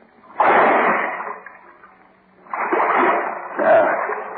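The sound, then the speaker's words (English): Heavy splashing as someone wades into waist-deep water: one surge of sloshing, a brief pause, then a longer stretch of churning splashes. No one speaks. “Water's not so deep. It's only up to my waist.”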